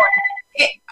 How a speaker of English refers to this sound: I don't know what's up with my phone. You know, who has a home phone anymore, right? But it just keeps ringing.